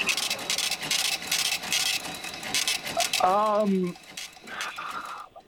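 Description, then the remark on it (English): A mechanical cash register clatters and ratchets for a few seconds, then a bright ringing tone sounds, followed by a softer final clunk. “That is a cash register.”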